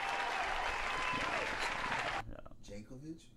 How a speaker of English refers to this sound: Before we get into our helmet segment, which I love, shout out to Warwick Dunn. Hold on, round of applause. Yes, sir. Yes, sir. Yes, sir.